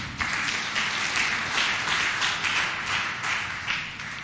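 An audience claps steadily for the pastor, many overlapping hands making a dense, sustained patter that stays fairly loud and even throughout, with no voices standing out.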